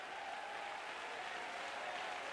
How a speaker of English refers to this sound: In Jesus' name, you ought to be on your feet. Shame on you. You ought to be clapping, going out of your mind, going berserk.